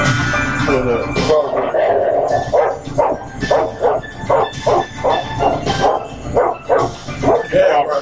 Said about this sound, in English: Barking away from him.